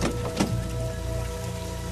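heavy rain pouring down

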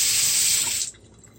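water running

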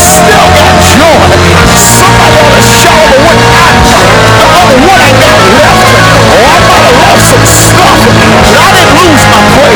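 audience shouting

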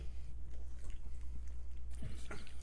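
sipping a drink

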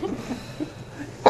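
sneeze

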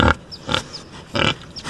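pigs grunting

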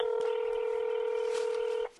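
telephone keypad dialing tones

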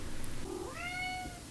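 cat meowing

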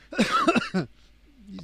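coughing

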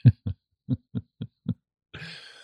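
heartbeat

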